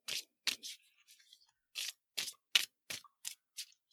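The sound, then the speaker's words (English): Tarot cards being shuffled, a series of short, crisp papery swishes and snaps coming in quick irregular bursts, quiet, with no voices. “Cut out all my shuffling noises in the editing.”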